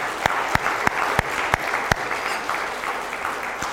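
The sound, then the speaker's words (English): An audience applauds steadily for fundraisers who raised £1,200 in an August Walking Challenge, a dense wash of many hands clapping, with a few sharper individual claps punctuating the first two seconds before the clapping continues evenly. “So we want to give them a round of applause for that.”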